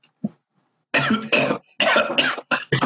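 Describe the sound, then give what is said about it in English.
A person coughs hard several times in quick succession after a cicada landed in their mouth, about six harsh, raspy bursts in two tight clusters after a brief pause, with no talking. “Sorry, a cicada just landed in my mouth.”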